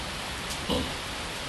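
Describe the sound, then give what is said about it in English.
Heavy rain pours down steadily, a dense, even hiss filling the background with no voices, just a constant wash of falling water. “The rain is pummeling down, isn't it?”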